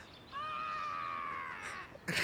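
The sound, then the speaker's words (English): A red-tailed hawk swooping down from the sky gives a single drawn-out, raspy scream, loud, holding steady for over a second before sagging downward, then a brief burst of noise right after. “A red-tailed hawk scoops down from the sky.”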